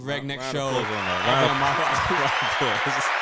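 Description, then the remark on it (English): A round of applause, a steady wash of clapping that runs the whole time beneath loud, excited voices laughing and whooping over it. “Round of applause, baby.”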